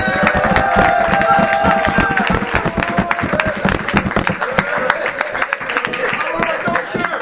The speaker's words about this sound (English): This clap now was more like the obligatory type, but it's in the morning.